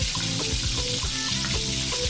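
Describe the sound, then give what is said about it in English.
A little water is added to a cooking pot of hot vegetable or palm oil with stock cubes and pomo (kanda), setting off a loud, steady sizzle and crackle that carries on for a couple of seconds without any talking. “Okay, add a little water.”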